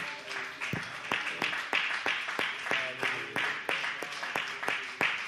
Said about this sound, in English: Would you clap your hands and would you magnify the Lord just for a moment?